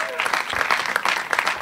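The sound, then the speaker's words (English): An audience claps steadily for a couple of seconds for a producer, a dense patter of many hands with no voices standing out. “Big round of applause”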